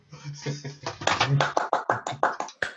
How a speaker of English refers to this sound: And he clapped himself as well.